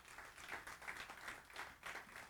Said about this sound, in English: I wish everyone in our church would help visitors feel welcome. Caney Creek does that so well. Give yourselves a round of applause tonight.